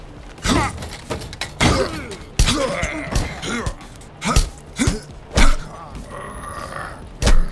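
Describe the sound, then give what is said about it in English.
A flurry of heavy punching impacts from a metal fist hitting a jaw, loud, each hit a sharp thud mixed with grunts and pained groans. About eight blows land at uneven intervals, some with a brittle, clattering edge. “Of my metal fist hitting his jaw rattled my body.”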